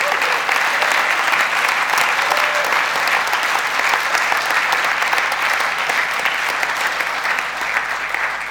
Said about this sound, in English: Guys, why don't you applaud the ladies for a moment?